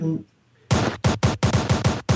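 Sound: gunshots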